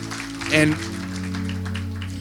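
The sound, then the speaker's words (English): Audience applause for a man as he leaves: a dense, steady patter of many hands clapping continuously, with a low sustained hum beneath it and a brief louder tonal swell early on. “Give him a clap as he goes.”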